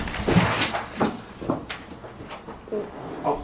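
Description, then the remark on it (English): A sheet of paper carrying a clue slides and scrapes under a door, a series of short, dry rustling swipes with brief pauses between them. “I slid it under the door.”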